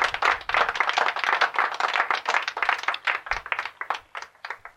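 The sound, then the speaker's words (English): A canned burst of applause from a sound-effect button: dense, rapid clapping from a crowd, steady and moderately loud for several seconds with no voices over it. “I'll press the applause button.”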